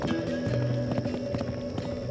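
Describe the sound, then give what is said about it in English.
Horse hooves pound in a quick, repeated clatter, steady in loudness, as a rider kicks her horse and gallops off toward a plateau, over a low sustained tonal background like a soft musical drone. “She kicks her horse and shoots off toward the plateau.”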